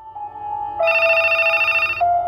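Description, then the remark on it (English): A telephone rings with a steady electronic warble, shifting to a brighter, harsher tone for about a second before settling back, past 7 o'clock on a Thursday. It sounds clear, with no voices. “I picked up the phone.”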